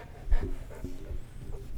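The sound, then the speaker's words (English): A dog pants in quick, uneven breaths, with a thin, faint whimper slipping in near the end; fairly quiet overall, with no one talking. “This fucking dog thinks it's a lap dog.”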